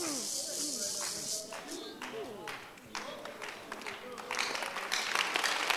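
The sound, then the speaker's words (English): An audience claps in a steady, scattered patter that swells toward the end, while a man's voice talks over the applause amid a broad crowd hiss. “Now, don't clap because I'm coming to you.”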